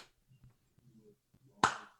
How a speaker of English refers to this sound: Yeah, you have a bad delay today. Let's do the clap test. Ready? Live on the air, we're going to do the clap test. I'm going to go ahead and clap.